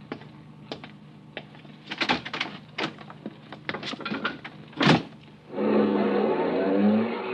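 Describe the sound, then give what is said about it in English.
A car carrying five men drives up and stops in front of the Northern Hotel, its engine rumbling into range after a series of scattered knocks and clicks, with no one speaking. “And then a car drove up.”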